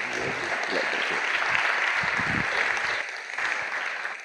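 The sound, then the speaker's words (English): An audience applauds steadily as a bishop is introduced, a dense wash of many hands clapping at once, fairly loud and sustained, with a slight dip in intensity toward the end and faint voices mixed in. “I would feel much better if we give the Lord a real hand clap because he's the one that's great.”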